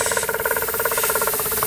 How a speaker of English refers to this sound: Smile. Relax your face. Not relax your face, but smile, breathe in. Now, trill on that exhale.